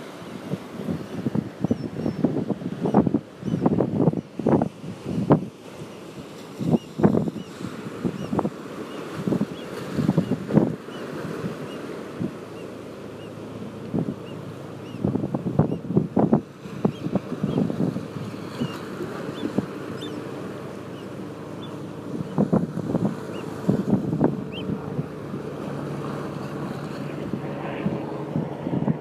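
Beach ambience: a steady rush of wind and surf, broken by irregular louder gusts and wave splashes that rise and fade, with no one speaking.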